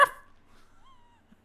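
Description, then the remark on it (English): A person lets out a single loud bark imitating a dog, then a faint, thin whine trails off in near silence. “You hear that bark? Let me hear it again.”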